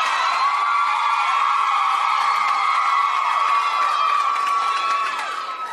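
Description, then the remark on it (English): A live audience at a show in Phoenix screams and cheers loudly, a dense wall of high-pitched shrieks and whoops that holds steady for several seconds before starting to taper off at the end. “Well, I can't hear when you scream like that.”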